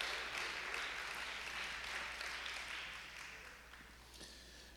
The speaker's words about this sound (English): Come on, let's make some noise for our children. Come on, we'd like to cheer for our kids.